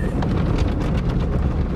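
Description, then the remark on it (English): Car wash brushes thrash against a car in a loud, steady roar, with a quick series of slapping, whooshing hits layered over a deep rumble and no voices. “they're just like beating the side of the car.”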